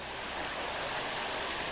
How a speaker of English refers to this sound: And the sound of the river, giant yet calm, echoing.